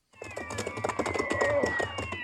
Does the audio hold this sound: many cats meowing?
yes